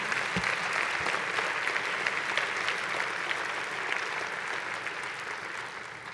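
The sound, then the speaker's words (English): A standing church audience gives the Lord a clap offering, clapping together in steady, dense applause that holds at an even, fairly loud level for several seconds, a continuous wash of many hands with no voices standing out. “Let's give up the Lord a clap offering.”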